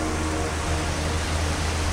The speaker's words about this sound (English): rain is pouring down.